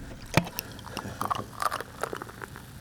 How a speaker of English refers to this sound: Here you go. Pouring beer now. Yes.